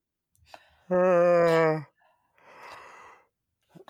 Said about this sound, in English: And the other way of thinking about it simply is to inhale on a yawn.